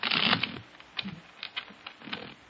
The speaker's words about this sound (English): Okay. Now, put it back in the deck. Now, I shuffle the cards.